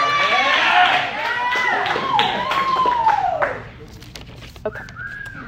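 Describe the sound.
An audience claps steadily and loudly for about three and a half seconds as a woman comes up to share a word, with high voices whooping over the applause, then it thins out to a few scattered claps.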